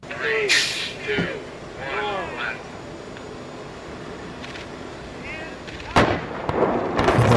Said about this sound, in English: The building just blew up. There's a bus in the way of his shot.